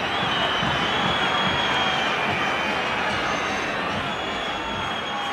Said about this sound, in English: And this is when the crowd just starts whistling and heckling.